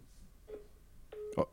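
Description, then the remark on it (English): Short electronic phone beeps from a call being dialed on a slow phone that is not connecting: a faint tone, then a louder cluster of clipped beeps near the end, with no one talking. “Yeah, you did, but it's not calling, which is very strange. Just try again.”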